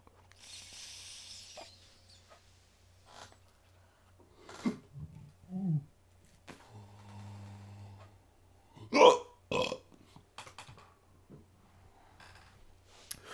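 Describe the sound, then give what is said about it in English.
A few short burps break an otherwise quiet stretch, one louder, harsher one near the end, with a faint low hum underneath and no talking. “Coughing and burping?”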